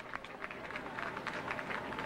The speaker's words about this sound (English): They're just so excited right around there. People are clapping. It's just a tremendous sense of excitement and relief here.